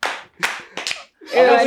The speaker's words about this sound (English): We'll do the claps.